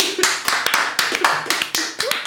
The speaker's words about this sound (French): On applaudit sur une menace de mort quand même, faut reconnaître.